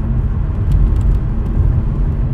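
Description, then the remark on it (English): Steady, fairly loud low rumble of a car driving home in traffic that is loosening up, engine and tire noise droning without a break, with no one talking. “I'm actually, traffic is, like, loosening up. I'm gonna be home soon.”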